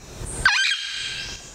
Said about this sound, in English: El Yunque captive parrots.